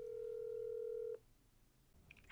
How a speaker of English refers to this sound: But I was going to call my mom and talk to her about it and share it with you guys. So let me get my mom on the phone. Let's see if she picks up.